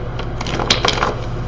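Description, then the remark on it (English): A brief burst of papery riffling and soft flicks as a deck of tarot cards is shuffled, with a few sharper snaps over a low steady background hum. “And take a good shuffle.”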